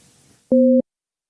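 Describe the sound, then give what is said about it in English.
A single loud, steady dual-pitched telephone tone beeps for about a third of a second, a busy-signal pulse, following faint low background noise and then cutting to silence. “Let's call this phone number here.”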